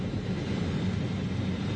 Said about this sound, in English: The plane believed to be carrying Edward Snowden, touching down in Moscow.